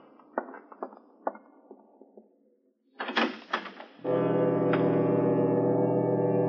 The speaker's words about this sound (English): I opened the door of the study and walked in.